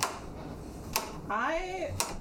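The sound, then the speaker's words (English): A knife chops mushrooms on a cutting board, three sharp taps spaced about a second apart, with a brief voiced sound from someone between the later strikes. “I'm chopping up our mushrooms.”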